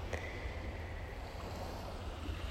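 Gentle waves roll in slowly along a marina shore in Port Townsend, Washington State, at about 7:45 on a June morning. A soft continuous hiss plays over a deep low rumble of wind, with no voices.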